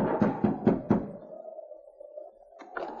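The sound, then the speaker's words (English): Four firm, evenly spaced knocks on the wooden door of the constable's cabin, followed by a low, steady hum that lingers, with a soft extra thump just before the end. “Luke hurried to the constable's cabin and knocked on the door.”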